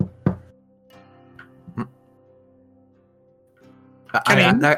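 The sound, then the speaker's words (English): Two sharp knocks on a building, landing about a second and a half apart over a steady, humming musical drone, followed by a loud burst of noisy sound at the end. “You give a knock.”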